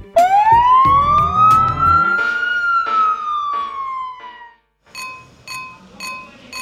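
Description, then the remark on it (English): A fire truck siren wails loudly, its tone sweeping up and slowly sliding back down over several seconds, with engine rumble underneath before it cuts off into other sounds. “they use their sirens to alert people that they're on their way. When you hear a siren getting closer, you should stay on the sidewalk”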